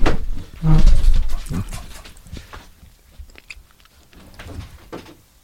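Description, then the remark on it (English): A dog whines and cries at a door in intermittent, muffled bursts, louder at first and then fading to softer whimpers, with a few thumps and no one talking. “Maybe he's whining at the door.”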